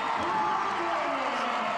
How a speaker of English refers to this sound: And the crowd goes wild.